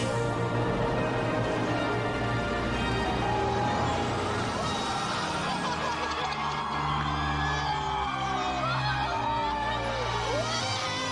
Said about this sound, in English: Move that bus! Move that bus! You guys know what to say. Say it with me. Here we go. Bus driver! Move that bus!